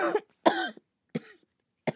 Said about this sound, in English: Caught completely off guard, I immediately choked on the smoke and tried my hardest not to cough up a lung.